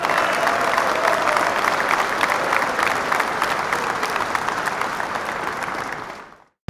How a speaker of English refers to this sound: This win is for all of us. So here's a huge round of applause to us.